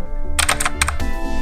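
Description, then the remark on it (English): A quick, loud burst of computer keyboard typing right up against the microphone, several sharp clacks tumbling together over half a second above a steady low hum, with no voices. “I'm going to put my mic right to my keyboard.”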